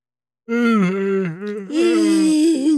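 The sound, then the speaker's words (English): A long, drawn-out human yawn, loud, rising into a strained, breathy stretch before tapering off, heard alone with no talking. “Now you're all yawning.”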